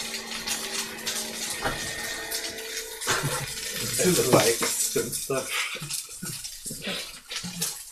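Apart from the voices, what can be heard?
food sizzling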